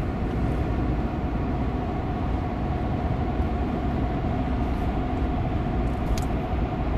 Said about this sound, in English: And I'm driving a big friggin' truck, 90 miles an hour right now.